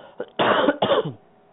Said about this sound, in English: And I have to beg your forgiveness because I do have a cold. So on occasion, I think I'm probably going to cough. But not a whole lot I can do about it.